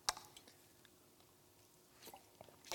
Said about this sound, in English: Slurp of coffee.